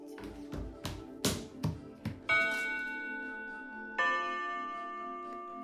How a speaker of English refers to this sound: Ugh, I always hated that clock. Sounded like a death knell.